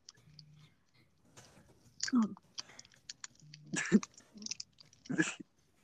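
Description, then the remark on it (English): A mobile phone vibrates in two short, low buzzes a few seconds apart, mixed with mouth clicks, smacking and breathy noises. “It's a vibration for my phone.”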